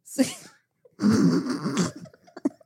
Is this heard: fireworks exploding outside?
no